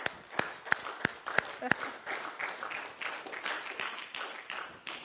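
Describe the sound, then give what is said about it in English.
A church audience cheers and applauds for the kids: a few sharp, loud claps stand out in the opening two seconds, then a steady wash of clapping and voices carries on to the end. “All right, let's give them a cheer.”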